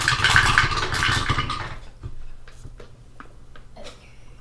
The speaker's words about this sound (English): Those four dice sound like they rolled forever. Like, longer than four dice should be rolling a short dice tower like that.